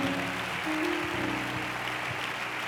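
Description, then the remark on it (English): An audience at a worship service claps their hands in praise of God, a dense, steady wash of applause that holds at an even loudness, with sustained low musical tones humming underneath and no one speaking. “Oh, clap your hands again and give Him a praise.”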